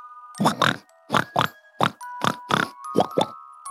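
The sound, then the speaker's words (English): A voice imitates a piglet, snorting and grunting in quick pairs, about nine loud snorts in a choppy rhythm over a faint steady hum. “He had kind of crumpled to the floor and was now laying on his side, wiggling his feet and snorting like a piglet.”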